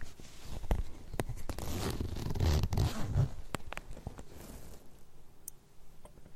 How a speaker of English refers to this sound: So today, I'm going to undo my zip.